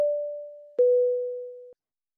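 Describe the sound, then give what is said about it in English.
A steady, mid-pitched telephone line tone sounds alone, breaks with a click partway through, then continues at a slightly lower pitch before cutting off abruptly. “are you on the phone? Yeah. Who are you calling?”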